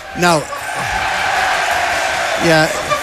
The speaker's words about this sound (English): Free kick to Galway United, and there's the big sarcastic cheer.